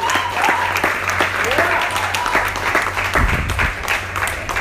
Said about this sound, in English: Clap yourselves, please.